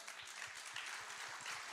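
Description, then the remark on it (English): A crowd claps steadily, a dense wash of many hands applauding together, sustained and fairly loud throughout with no voices standing out. “You're getting more applause than me.”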